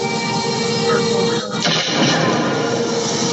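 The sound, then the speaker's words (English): A trash can with a cat on it gets knocked over partway through with a single loud crash and rattle, set against a constant wash of background noise, no voices. “And then Dusty knocks over the trash can with the cat on it.”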